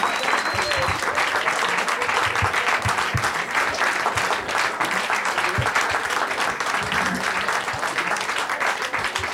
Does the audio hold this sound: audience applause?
yes